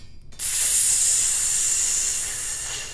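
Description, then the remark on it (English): A sudden, loud hiss of steam bursts in after a brief quiet moment and sustains steadily, slowly tapering off, as a hot short sword that is being worked on is plunged into water. “She goes and she puts whatever she's working on, it looks like it's just like a short sword, in the water, and you hear...”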